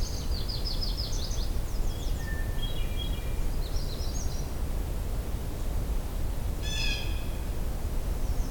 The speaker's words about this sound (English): Blue jays.